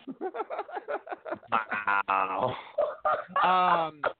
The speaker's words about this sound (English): I need to blow my nose, excuse me.